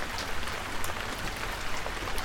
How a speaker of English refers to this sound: Jump off the porch into the rain. You're soaked in no time, and you don't care.